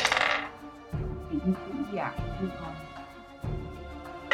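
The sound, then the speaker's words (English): During a tabletop role-playing game, dice clatter and tumble across a tabletop in a few quick bursts of rattling clicks, with faint voices murmuring in the background. “Our dice don't like us tonight.”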